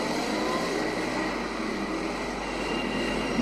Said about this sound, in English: Look right and left. Big lorry. We better wait till the traffic stops.